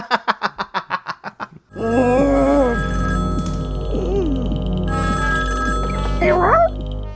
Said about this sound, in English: Why don't they just let the phone go ring? Just like, dog, don't answer the phone, dog.